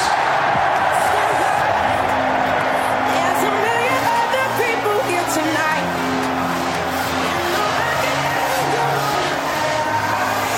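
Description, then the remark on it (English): A huge cricket crowd at Lord's roars in a loud, unbroken wall of cheering for about ten seconds as Eoin Morgan stands on the podium with the World Cup trophy and England are crowned world champions, with low droning tones running through the din. “And in a moment, you are going to hear a tremendous roar from this crowd here at Lord's as Eoin Morgan stands on the podium, is in front of his team.”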